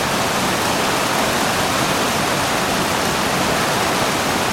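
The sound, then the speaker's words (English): Heavy torrential rain pours down in a dense, steady, loud roar, with no pauses or other sounds breaking through the continuous wash of noise. “But then the rains came. And I don't mean just any rains. Torrential rains.”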